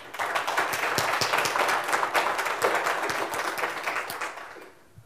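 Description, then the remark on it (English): A church audience breaks into sustained applause, many hands clapping densely and steadily for several seconds before it thins out and fades at the end. “And so everybody give them a round of applause.”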